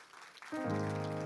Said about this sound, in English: Come on, if you believe that, stand on your feet with me and give Jesus a hand clap of praise.